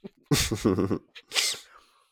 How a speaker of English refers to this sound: Was that loud as fuck? Nah, it wasn't. It really wasn't. Achoo!